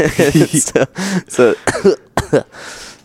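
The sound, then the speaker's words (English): A man gives several harsh coughs in quick succession, mixed with strained voiced throat sounds and rasping breaths between them, fading into a breathy rasp at the end. “That was the cancer. It's gone now. It's gone. It's gone. He coughed it out.”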